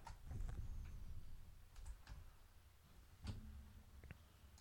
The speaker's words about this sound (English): And a cat stepped on the keyboard.